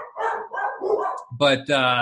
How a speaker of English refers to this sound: Oh, and there go the dogs. Brilliant. the joys of recording podcasts.